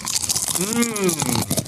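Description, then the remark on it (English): Crinkle cut dill pickle potato chips crunch in a steady stream of dry, crackly bursts, with a short rising-and-falling voiced hum breaking in over the middle of the chewing. “The next one we're gonna try is the crinkle cut potato chips dill pickle.”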